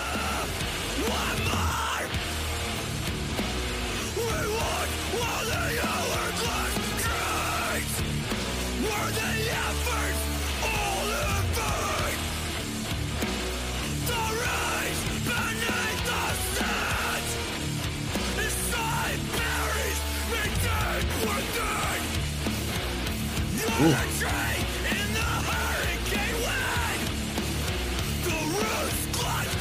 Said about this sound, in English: I do like the way that he screams. He enunciates really well. You can just tell what he's saying.